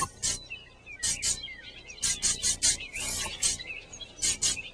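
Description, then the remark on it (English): Rhythmic snapping and scratching by a dog named Blooper: short, bright, raspy bursts, often in quick pairs, repeating in a steady groove. Faint chirping tones weave underneath, and no one speaks. “He snaps and scratches in perfect rhythm.”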